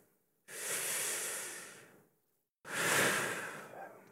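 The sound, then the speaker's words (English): A deep breath drawn in slowly, a brief pause, then a long airy exhale, both broad and hissing with no voice. “The good goes in, the bad comes out.”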